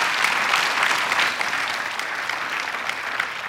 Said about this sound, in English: It's been some time, and I see you guys have made it 45 years in ministry. Why don't you clap your hands for 45 years?